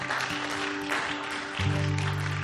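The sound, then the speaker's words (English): Steady applause from a large crowd giving the Lord a round of applause fills the space, a dense wash of clapping. Partway through, a low sustained musical tone enters underneath and holds. “Come on, let's give the Lord a good round of applause today.”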